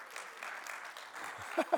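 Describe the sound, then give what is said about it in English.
A crowd claps steadily, a dense, even patter of many hands that carries on throughout, with a couple of short vocal bursts popping out near the end. “I said that a week or two ago and I got applause, so I'm like, I must be repeating it for shameless, you know, applause.”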